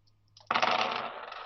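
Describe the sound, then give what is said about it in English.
A handful of dice, purple, red and black, suddenly clatters onto a hard tabletop and rattles, the bright tumbling noise gradually settling. No one speaks. “So that's, purple, red, and a black dice.”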